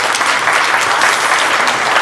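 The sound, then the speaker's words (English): People clap steadily in applause for volunteers who came out on a cold Saturday to fix leaking, a dense, even wash of applause that stays loud and consistent for a couple of seconds without any voices breaking through. “We can give them a round of applause.”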